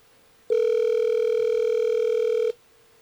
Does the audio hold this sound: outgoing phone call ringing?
yes